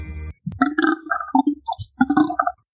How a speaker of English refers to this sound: So I felt the heat of that burp in my face. Yeah, no, it was straight in your face. The smell is very reminiscent of Celestin gin.